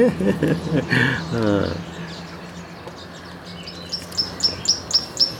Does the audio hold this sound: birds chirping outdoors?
yes